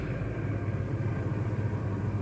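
A truck engine rumbles steadily, a continuous low drone with no change in loudness and no voices over it.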